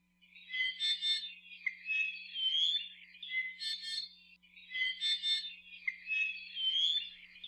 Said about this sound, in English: The i'iwi sing a huge repertoire of songs, the most famous of which sounds a bit like a squeaky gate.